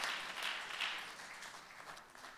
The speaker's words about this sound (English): Give the Lord a hand clap of praise as you're being seated in his presence.